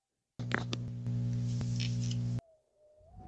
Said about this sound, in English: This would have been the end of the elf's story, had he not heard that sound when he did. A clicking, then a buzzing, and then another.